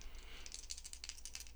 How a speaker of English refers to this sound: Dice. All right, I'm going to roll some dice. I've got a red die and a black die.